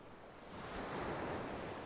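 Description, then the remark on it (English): Ocean waves wash onto a shore in a broad, steady roar that swells louder after the first half second and holds, with a faint windy hiss and no voices. “Picture yourself on an ocean shore.”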